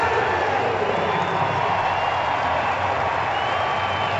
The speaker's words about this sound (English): And the Philly crowd welcomed him with open arms in this one,